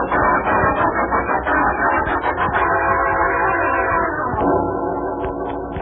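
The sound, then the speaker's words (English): A train rolls in loudly, arriving at Los Angeles Station, a steady heavy rumble and clatter of wheels filling the whole stretch, with sustained whistle-like tones sounding over it. “Have them meet that train.”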